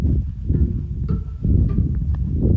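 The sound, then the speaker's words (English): Horses moving outdoors on a beautiful day, with soft hoof clops and shuffling over a steady low rumble, and a few brief higher calls or squeaks mixed in. No one speaks. “Just walking down to see my horses.”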